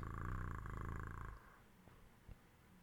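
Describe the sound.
A person imitates a cat's purr with a loud, rumbling drone that lasts just over a second, then falls away into near quiet with a faint click or two.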